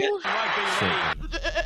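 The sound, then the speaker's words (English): A loud, wavering bleat like a goat's cry, harsh and nasal, lasting about a second, played from a sound effect button, followed by a person's voice speaking. “That's not rugby league goat.”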